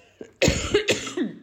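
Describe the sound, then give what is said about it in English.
A short fit of harsh, choking coughs after a sip of water went down the wrong way: two loud, raspy bursts in quick succession followed by a weaker third, with no talking. “Just that water just did not go down right.”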